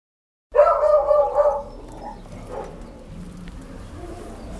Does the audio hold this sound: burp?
no